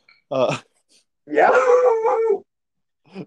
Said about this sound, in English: Yeah. Who was that? That's Urza. Poor Urza wants to have the podcast. Dog. Why was Urza's bark so deep?